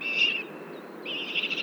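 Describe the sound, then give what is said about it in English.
Raspy, trilling food-begging calls from fledgling birds in late June, two buzzy bursts in the upper range separated by a brief lull, moderately loud over a soft background hiss. “I hear a bunch of fledglings giving that kind of food bag whale call. And it's a little bit more raspy and trilly than the adult whale.”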